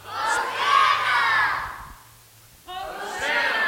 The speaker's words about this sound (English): let's do a little Hosanna-ing. I see you're all in the mood for this. Have you guys yell out Hosanna? Hosanna! All right, pretty good. Can you guys do better? Hosanna! Try it one more time.